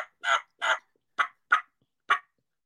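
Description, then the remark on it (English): A turkey call blown indoors in a house sounds five raspy yelps, two longer notes followed by three shorter, sharper ones, each a loud burst separated by silence. “Hopefully your wife doesn't get mad that you're turkey calling in the house.”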